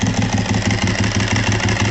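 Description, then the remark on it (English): A Ducati motorcycle engine being revved, running with a steady, lumpy rhythmic pulse, overlaid by the loud metallic rattle of its dry clutch, continuous for the whole moment with no voices. “When I had a Buell, we used to make fun of the Ducati guys for their dry clutch.”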